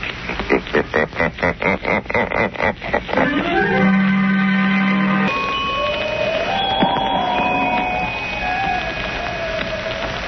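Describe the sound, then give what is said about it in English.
A rapid run of pulsing, throbbing strokes gives way to the sustained, shimmering tones of the temple bells of Neban, ringing and humming in layered pitches, slowly wavering as they fade. “As though they came out of nowhere. The temple bells of Neban.”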